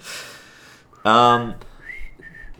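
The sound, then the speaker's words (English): Someone tries to whistle: a breathy rush of air, a sudden loud voiced squawk, then a thin, wavering, faint whistle tone that breaks off briefly before trailing away. “Isn't that it? We can't whistle.”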